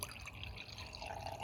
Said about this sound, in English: Well, we got some little flasks here, so I'll pour one each for you guys.